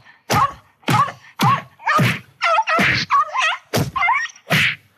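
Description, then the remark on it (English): A rapid series of heavy punching thuds from a sound effect, about seven blows landing loud in an uneven rhythm, mixed with short grunting or vocal sounds between the hits and no speech. “Who are you punching there?”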